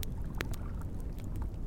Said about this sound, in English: When I finally tore my attention away from Lyra's petition, I noticed Circe paddling across the lake.